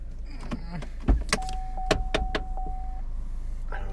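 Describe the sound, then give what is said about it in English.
A car's warning chime sounds as one steady, fairly soft tone lasting under two seconds, over low engine hum and several sharp clicks and thumps from the car's doors or windows. “See, every time your audience members forget that this is a real car, we have something like a car ding.”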